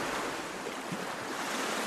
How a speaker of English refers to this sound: The simple beauty of it, the ruggedness, the sound of the sea, constant when you're in the village of Waterville.